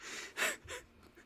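Heavy, airy breathing of a person with a cold, breathing on someone's neck: a sharp, gasping inhale followed by a softer exhale, with no talking.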